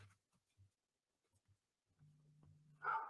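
A single dog bark bursts out loudly at the very end, after a few soft low thumps and a brief steady hum.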